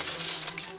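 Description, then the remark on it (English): A quick burst of breaking glass as a rock breaks a window of Randy Ramirez's house, bright tinkling shards clattering for under a second, fairly quiet, with no voices. “You make a wish and then try and break some of the glass in Randy's house.”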